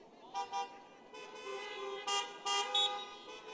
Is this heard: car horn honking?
yes